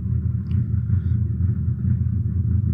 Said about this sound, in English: It sounds like a fucking chainsaw. I think we're going to have to stop recording till they fucking stop. What's he doing? Dude, that's a car. He's over here. He's got to be over here. Right? Yeah, he's one of my neighbors. He races.